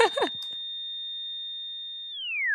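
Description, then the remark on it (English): A brief burst of sound gives way to a steady, unbroken high electronic tone like a heart monitor flatlining, held for about two seconds before it bends sharply downward in pitch. “Beep. Flatline.”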